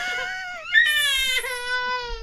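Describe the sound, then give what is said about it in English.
A baby girl lets out a long, angry crying yell because she is not allowed to have a computer mouse, a strained high-pitched wail that rises sharply and holds loud for about two seconds with no talking over it. “That's her mad yell, right?”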